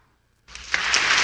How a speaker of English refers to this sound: Wait, he gives the applause. I love it. There it is. Oh, awesome. Round of applause for DJ McBuff at the back.